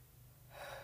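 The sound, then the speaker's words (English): A single deep, intentional breath drawn in, a soft airy rush that swells steadily and ends in a brief louder burst. No one speaks. “One last deep breath, friends.”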